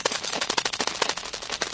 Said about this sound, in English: This, the professor announced, is the sound of a cat's brain while asleep.